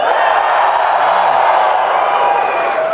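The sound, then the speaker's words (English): An audience cheers and whoops in a vote for the name Dragonsteel Con, a steady, loud roar of many voices that holds for about three seconds without fading. “Cheer for Dragonsteel Con.”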